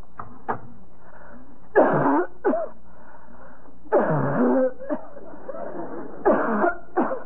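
A person coughs repeatedly in harsh, rasping bursts, some single and some in clusters, fairly loud with no talking in between, at a doctor's office; the cough started with a cold and has been getting worse all week.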